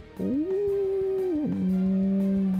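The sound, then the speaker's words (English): A strange, cut-short howl heard from a little way off, coming up a staircase: a sustained tonal wail that rises, holds, then abruptly drops and shifts to a lower steady note, sounding oddly clipped and unnatural. No one speaks. “almost like a weird, stunted howl.”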